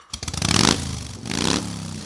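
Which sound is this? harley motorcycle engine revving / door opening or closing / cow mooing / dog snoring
harley motorcycle engine revving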